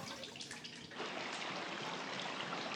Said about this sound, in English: That's fried. Okay, I get that part. Yeah. That makes sense to me. Okay, that's probably when you first, you know, right when you take it out. Yeah. Still sizzling a little bit.